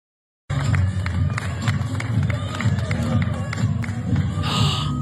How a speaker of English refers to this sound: People cheering.